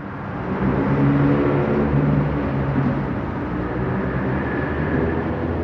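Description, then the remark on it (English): Steady, dense rumble of traffic on an 8-lane expressway overhead, heard from underneath it in a space about 100 yards across, a loud continuous low roar with a droning, reverberant quality, no voices. “It's got to be a good 100 yards across. As cathedral-like as you can possibly get for being underneath a 8-lane expressway. It's loud, constant.”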